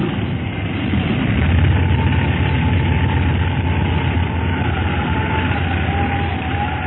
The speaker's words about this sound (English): I never thought you'd be able to make a dead stick landing in this windstorm. I didn't either for a little while, but I think we've won. Hold tight now. I'm going to set her down.